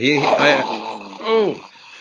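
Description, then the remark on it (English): A voice imitates heavy, rasping mechanical breathing like Darth Vader or Smaug: a long growly exhale followed by a shorter, rising-and-falling second breath, both loud and throaty with a pitched, resonant hum. “I didn't know if it was Smaug breathing or it was Darth Vader.”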